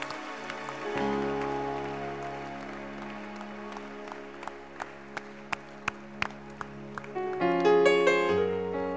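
An audience claps in steady unison, about a dozen sharp beats in a regular rhythm, over sustained organ-like keyboard chords that swell louder near the end. No one speaks.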